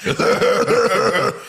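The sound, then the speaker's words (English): A voice mimics Donkey Kong coughing after smoking a joint, a quick run of several loud, raspy hacks lasting about a second and a half with no talking. “I want to see Donkey Kong, like, smoke a joint and then start coughing.”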